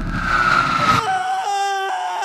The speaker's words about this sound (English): I woke up fast. I knew the screaming was real.